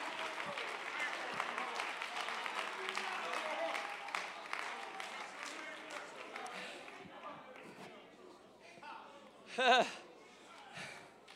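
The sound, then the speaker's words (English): A crowd claps in praise, steadily for several seconds, a dense patter of many hands that gradually thins and fades, followed by a brief raised voice near the end. “You ought to clap because he's worthy.”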